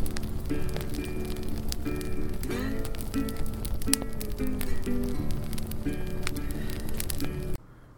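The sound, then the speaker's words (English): Steady campfire crackling, a dense bed of small pops and snaps with a few sharper cracks, under faint tonal music, continuing evenly before cutting off abruptly near the end. “Been thinking about changing our intro music and our little campfire crackle to something a little more festive, like maybe some R&B.”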